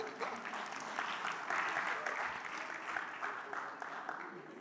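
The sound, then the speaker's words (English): An audience claps steadily for several seconds, a dense, continuous patter of many hands at a fairly even level with no voices standing out. “Clap now. Keep the clapping going.”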